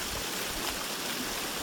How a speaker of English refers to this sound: it's a river walk of boulders and crossings, this time in a fast-moving stream at a much greater incline.